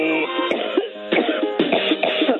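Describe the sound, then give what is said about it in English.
A series of harsh coughs presented as Hillary Clinton coughing, in a steady rhythm, about four or five bursts, loud, set over a continuous backing of music. “That would be hearing Hillary Clinton coughing the top five songs in the country.”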